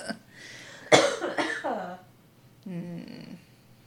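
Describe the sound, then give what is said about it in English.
A few harsh coughs burst out in quick succession, followed after a short pause by a brief strained, voiced throat sound. “I feel like I have to sneeze and cough at the same time.”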